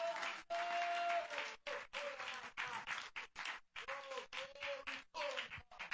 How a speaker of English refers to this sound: How many believe? Clap your hands if you believe.